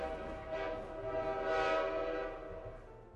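A distant train engine horn at nightfall sounds one long, steady chord-like blast that swells slightly midway and eases off at the end, with a low rumble underneath and no voices.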